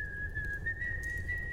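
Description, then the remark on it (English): Someone whistles a sustained, clear high note while walking through the halls in the morning, the pitch shifting only slightly and drifting upward near the end, over a low background rumble. No one speaks. “Yeah, you're up, successful full long rest, and you can already hear Yuri sort of like whistling and walking through the halls.”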